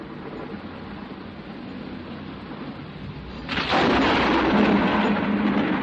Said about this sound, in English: A mighty thunderclap broke my deep slumber, and I looked around to see where I was.